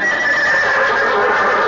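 A horse whinnies loudly, one long, strained neigh with a shrill tone that holds steady for nearly two seconds. No voices are heard.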